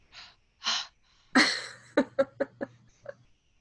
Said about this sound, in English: You know when you're like holding a microphone too close to your mouth and you can like hear you breathing?